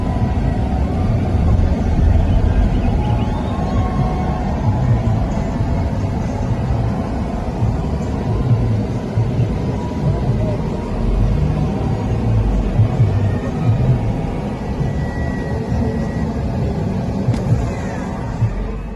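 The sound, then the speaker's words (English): A loud, steady roar of a crowd gathered to see Trump, recorded from inside a vehicle and dulled in editing, muffled and heavy in the low end, with many voices blending into a continuous rumbling murmur and no clear individual words. “Now, for those of you listening on audio, you're probably hearing in the background a rather loud crowd.”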